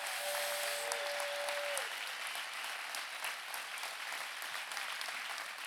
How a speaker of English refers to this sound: Stand up. Give them a big old clap.